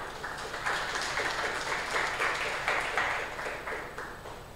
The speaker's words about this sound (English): Appreciate that. Welcome. I like you clapping.